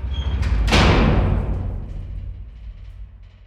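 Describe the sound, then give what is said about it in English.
The heavy solid steel outer door of a prison dark cell slams shut with one booming impact, followed by a long, low reverberant decay that fades slowly. “An outer solid steel door was closed, leaving the inmate in complete darkness.”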